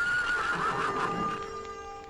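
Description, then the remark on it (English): A panicked horse lets out a long, shrill, frantic whinny, loud, its pitch wavering before fading slightly at the end, with no voices. “The two old horses that had been strapped there got free as the leathers that had held them in place caught fire and broke, and in their panic, as their tails and manes were flames, they trampled to death numerous clansmen”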